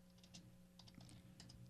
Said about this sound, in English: Is he Googling right now? Oh, yeah. He's furiously pounding the keyboard right now.